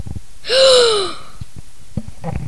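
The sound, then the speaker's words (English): A single loud gasp of horror by the story character Sushil, a sharp voiced intake of breath that slides downward in pitch before fading, followed by near silence with a few faint clicks. “Sushil gasped in horror.”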